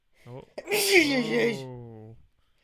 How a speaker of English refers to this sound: Well, one sec, I gotta sneeze.